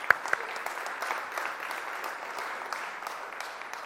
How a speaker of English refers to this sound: Round of applause, I think.